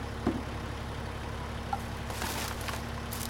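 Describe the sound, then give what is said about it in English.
A truck engine idles with a steady, low droning hum throughout as the truck is connected and begins to lift, fairly quiet, with a couple of brief clicks and a faint hiss of noise rising toward the end. “Hurry, the truck is connected. It's about to begin. It's beginning to lift up.”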